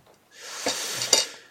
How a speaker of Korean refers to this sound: 뭐 뭔가 또 깨지는 소리가 또 나고 있습니다, 여러분. 오늘의 테마는 유리 깨지는 건가요? 그렇죠?